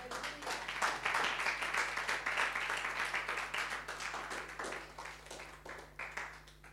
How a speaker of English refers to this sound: Amen. Clap for the Lord.